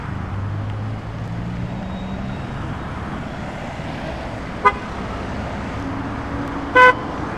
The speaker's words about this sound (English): Let me get back out of the way of this one. I just wanted to let that motorcycle, that pickup truck pass.